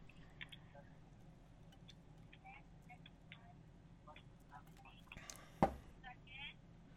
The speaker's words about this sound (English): That break brought to you by water and ice, clearing my throat.